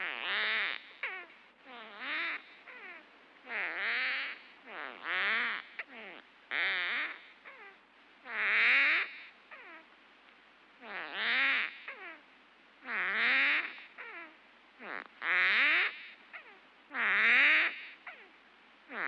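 Insect stridulation slowed twentyfold becomes a series of deep, roaring bursts with rattling, gliding tones, the successive impacts as the ridges are passed clearly audible, about ten pulses repeating roughly every two seconds with brief gaps between them.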